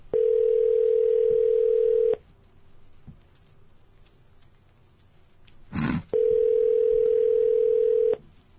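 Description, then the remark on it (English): A telephone ringback tone on an outgoing call: two steady two-second electronic tones separated by a long pause, clear, with a brief rustle just before the second ring. “Well, it's ringing. I don't hear it. It's ringing.”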